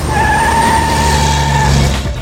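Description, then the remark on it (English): A large black pickup truck roars around a cobblestone corner as its tires screech in a long, sustained squeal, engine rumbling loudly underneath before the sound cuts off abruptly. “As my eyes began to droop, a large black pickup truck came roaring around the cobblestone corner.”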